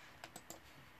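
Three quick, sharp keyboard or mouse clicks in an uneven rhythm, fairly quiet over a faint background hiss, with no talking.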